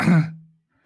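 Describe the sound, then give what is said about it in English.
A single short cough, fairly loud, with a rough throaty burst that trails off into a brief voiced grunt before silence. “Oh, I just realised your cough.”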